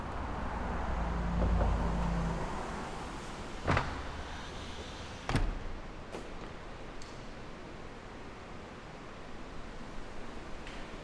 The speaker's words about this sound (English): you can now hear the sound of the city coming in. And what we're going to do is slowly close them back up, and you'll hear this sort of calm return to the space.